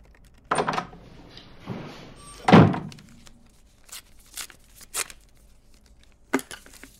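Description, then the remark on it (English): A door is pushed shut by someone on their way out with one solid thud, preceded by a couple of softer knocks and shuffles and followed by faint clicks and small taps. No one speaks. “Shut the door on your way out.”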